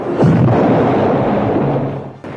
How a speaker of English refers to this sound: Two of his men went with him and helped him turn it towards the advancing troops from the south. Grabbing a piece of glowing timber, he touched it to the fuse and it fired with a loud boom.